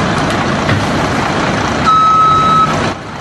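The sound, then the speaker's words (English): A backhoe's engine rumbles steadily throughout as it bumps a tree in New Jersey, setting off an explosion of pollen; partway through, a single high, steady warning beep sounds for under a second. No one speaks. “He bumps a tree with a backhoe, and you can see the explosion of pollen.”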